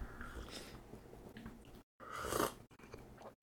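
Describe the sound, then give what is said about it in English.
A quiet slurping sip of hot cinnamon and maple flavored black tea, a breathy airy draw with a softer sip near the start and a louder one later, surrounded by small mouth noises and brief silences. “Now that I have to describe your tea to you, I'm like, all right, I gotta take another sip.”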